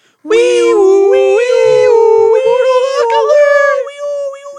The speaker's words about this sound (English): My Mortal Walk of the Week, can we cue the sirens?